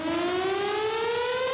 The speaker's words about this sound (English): No, the siren? We don't need it. We don't need it.